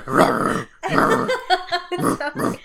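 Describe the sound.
A person imitates a rhino's growl: two long, rough, throaty rumbles followed by several shorter, choppier grunting bursts, loud and gravelly with no other talk.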